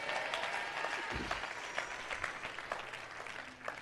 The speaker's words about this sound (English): Everybody clap your hands and shout, yeah!